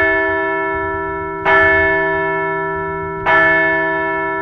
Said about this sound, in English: Let's ring the bell for the Red Hot Fightin' Phils.